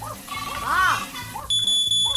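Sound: smoke alarm beeping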